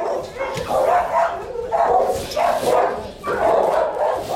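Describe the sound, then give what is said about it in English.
Several dogs bark and yelp over one another in a continuous, echoing chorus at a dog shelter in New York City, with loud bursts rising roughly every second or so. “In December, I went to a dog shelter run by Animal Care Centers of New York City.”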